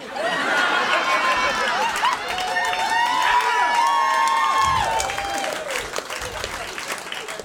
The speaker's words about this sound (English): So now that bit climaxes into an applause break typically because I've heightened, heightened, heightened, and then I've